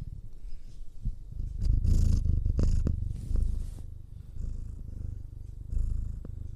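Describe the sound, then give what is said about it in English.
A domestic cat named Ripley purrs in a steady, low rumbling rhythm that swells and eases with each breath, with a few brief rustling bumps as if the microphone is handled. “You hear him purring?”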